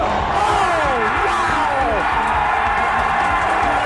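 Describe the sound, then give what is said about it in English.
A huge arena crowd roars and cheers continuously, with a dense wash of voices and shrill whoops and yells rising and falling throughout, loud and unbroken for the whole stretch. “Listen to this crowd.”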